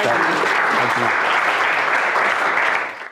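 Sustained audience applause, a dense, steady wash of many hands clapping at full loudness for about three seconds before quickly tapering off at the end, with faint voices mixed in early.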